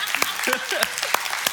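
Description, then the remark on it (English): An audience claps steadily for the Lord, many overlapping hand claps forming a dense, continuous applause, with faint voices calling out underneath. “yeah, clap it up. Clap for the Lord.”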